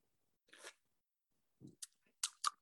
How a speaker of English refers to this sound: But yeah, it's 6.6%. It's from Front Porch Brewing, which is in Connecticut, I think. It's yeah, and it's North Haven is when it's from, and so. I'm going to have a sip of that.